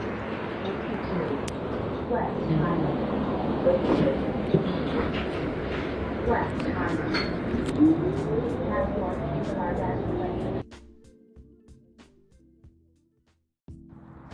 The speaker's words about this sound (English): This is my time with y'all, so kind of forgive if you hear the cars passing by.